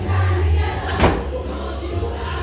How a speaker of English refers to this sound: Someone just tried to walk through the door. It's fine.